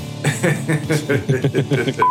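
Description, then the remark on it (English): A person talks for about two seconds, then a steady, high-pitched censor bleep abruptly cuts in at the end, clear and fairly loud, replacing the voice. “Now I'm gonna beep that out and it's gonna make it sound like you said the word.”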